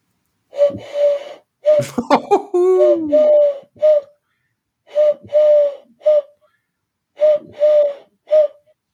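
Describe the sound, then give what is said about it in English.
A person imitates a wood pigeon's cooing with soft, breathy hoots in rhythmic phrases of several notes, pausing between phrases and repeating them; a brief snort or laugh breaks in near the start. “That's your wood pigeon, right? Yeah, it's your wood pigeon.”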